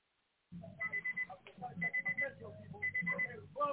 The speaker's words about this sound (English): We can hear you and your alarm in the background, caller.